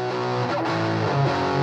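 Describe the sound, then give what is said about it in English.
A classic-sounding distorted electric guitar riff rings out with a huge, washy stadium reverb added, sustained chords blurring into each other at a steady, loud level with no voices. “We're gonna add some like stadium reverb to make it sound like I'm playing in a stadium.”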